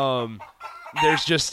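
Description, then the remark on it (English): A chicken clucks, played from a tape: a drawn-out, nasal squawk, a brief pause, then a loud, rapid burst of choppy clucks. No one speaks. “Hey, first of all, why did you play that chicken noise tape for the beginning of the show?”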